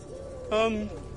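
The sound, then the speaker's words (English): A single short pigeon coo, a low throaty call lasting under half a second, clear above a quiet background hum. “Because I think those pigeons have noticed us.”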